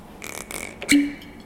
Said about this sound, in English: Well, I'm just going to open this bottle.